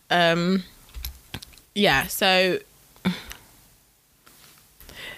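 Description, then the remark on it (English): Scattered clicks of typing on a computer keyboard that isn't working, a few irregular taps spaced out over several seconds, mixed with short bursts of wordless voice sounds between them. “My keyboard isn't working.”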